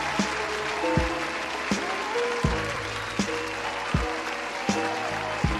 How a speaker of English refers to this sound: Let me get, what's my clap sound?